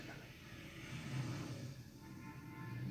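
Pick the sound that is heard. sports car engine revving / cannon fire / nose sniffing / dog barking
sports car engine revving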